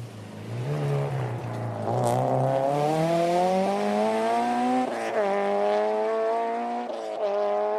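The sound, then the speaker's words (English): A rally car driven by Alison and Adrian passes a corner on a rally stage, its engine roaring past, revs climbing and shifting through gears as it accelerates by, loud throughout with no voices over it. “Based on the time they were scheduled to start the stage, Alison and Adrian should be passing the corner about now, but there's no sign of the car.”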